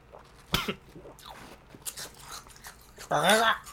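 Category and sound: food or drink, chewing food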